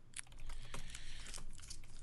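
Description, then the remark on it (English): Plastic packaging crinkles and rustles as a plastic bag is pulled and torn open while a box is being unpacked, a dense run of sharp crackles lasting a couple of seconds with no talking. “struggles to break into his box. Struggles with packaging.”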